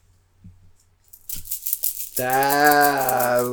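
A few soft taps, then a short burst of bright, rattly metallic jingling from a ring. A steady, sustained voice-like tone follows and continues to the end.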